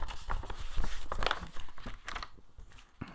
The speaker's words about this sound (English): Okay, so I printed some of them out, you can hear. This is the paper.